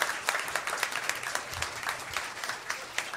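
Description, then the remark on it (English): An audience applauds steadily, a dense wash of many overlapping hand claps with crisp bright bursts throughout, holding at an even level for the whole stretch with no talking. “cheer for that, yeah.”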